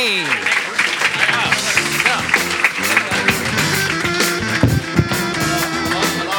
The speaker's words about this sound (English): All right, ladies and gentlemen, big round of applause.